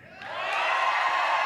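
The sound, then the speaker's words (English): An audience erupts in loud, sustained cheering and high-pitched shouting to vote for the youthful version, swelling over the first half-second and holding steady, with many overlapping voices whooping together. “You had your shot. You could have screamed.”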